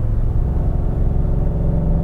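A gas truck engine drones loudly and steadily while accelerating uphill at about 3,200 to 3,300 RPM before shifting gear, a deep, laboring rumble with a constant pitch as if straining under load, with no voices over it.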